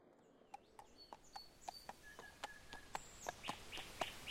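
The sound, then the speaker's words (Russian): Birds whistle in short, thin tones against a steady run of sharp, evenly spaced clicks, the whole scene fairly quiet and with no one talking. “Птицы над ним летели, весело посвистывая.”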